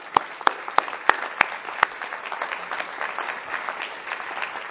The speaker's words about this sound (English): So thanks to each of all of you. I would like to have a round of applause for yourselves, because we couldn't have gotten here without you. So thank you.